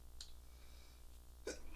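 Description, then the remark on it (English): Two short sneezes, a small stifled one near the start and a stronger burst at the end, both fairly quiet over a low steady background hum, with no one talking. “All right, sorry about that sneezing.”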